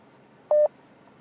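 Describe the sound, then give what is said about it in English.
A single short electronic beep from a phone on loudspeaker, like a keypad dial tone, sounds loud and clear against a faint, steady background hiss, with no talking. “sometimes the phone is making noise.”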